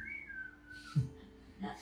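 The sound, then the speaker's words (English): Someone whistles a bird-like call: one clear, fairly loud high note held for about a second and gliding slightly downward, followed by a couple of short low thumps. “He just learned to mimic bird whistles really well.”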